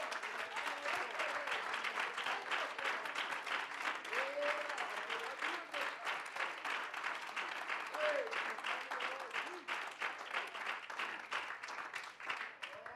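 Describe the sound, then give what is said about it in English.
A church audience applauds their pastor and his family with dense, sustained hand clapping that fills the room for the whole stretch, with faint scattered voices calling out beneath the clapping. “Why don't you give your pastor and his family a real good hand clap?”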